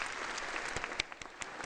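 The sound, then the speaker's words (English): Audience applause for a group of kids, a dense wash of many hands clapping steadily with a few sharper individual claps standing out, fairly soft overall and without voices. “Give these kids a round of applause.”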